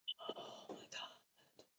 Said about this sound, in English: Oh my god! I didn't mean to gasp like that.